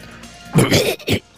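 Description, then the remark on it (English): A harsh cough, followed quickly by a second shorter cough, both loud and throaty with no talking around them. “Oh, and then he coughs a lot, too.”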